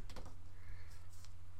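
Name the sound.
percentile dice being rolled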